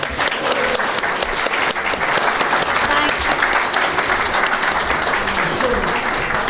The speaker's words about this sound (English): Thank you very much, everybody, from Big Finish. And I think a special round of applause